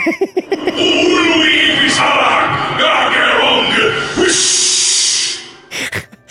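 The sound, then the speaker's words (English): A voice imitates the sound effect made when Yaxaron dies: a few short voiced grunts, then a loud, drawn-out breathy whoosh lasting several seconds before cutting off, followed by a quick breath. “Where they go, like when Yaxaron dies, it goes whoosh.”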